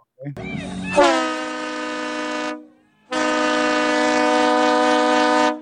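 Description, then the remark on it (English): Two long, loud train horn blasts, the first about a second and a half and the second longer, following a brief rising sound at the start. “Jump on that train to Texas for the race.”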